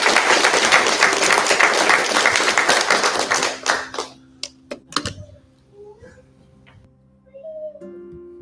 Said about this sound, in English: Thank you. Y'all did a great job. Give these folks a round of applause.